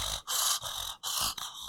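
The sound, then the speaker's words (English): Heavy, rasping breaths, three loud, breathy pulses in quick succession with short pauses between them, and no talking. “We don't need you to be breathing like that.”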